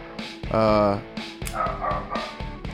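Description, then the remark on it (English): A dog barks in a quick series of loud, sharp woofs, with a longer, strained bark early on and shorter yips following, while voices murmur faintly underneath. “I hope the editors have left Joe's barking dog in the back for all this.”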